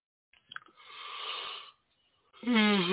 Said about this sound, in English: Mm-hmm. Yeah, just yawn at that one, right? Yeah. Did you just yawn at me? I sure did.